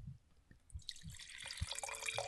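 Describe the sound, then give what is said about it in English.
Chenin Blanc and Chardonnay wine being poured into a glass: a few soft drips and gurgles at first, then a steady, smooth stream of liquid that grows fuller as the glass fills. No one speaks. “Well, that's the sound I like. Nice smooth pour.”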